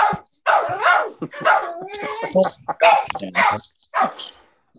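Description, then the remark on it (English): A dog barks and yips in a rapid, uneven run of sharp bursts, with a rising whine in the middle, fairly loud, before trailing off. “Okay, so she's a dog.”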